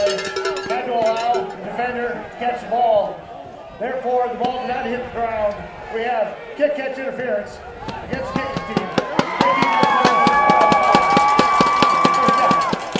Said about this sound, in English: Turn down our crowd, Mike, as the cowbells come up.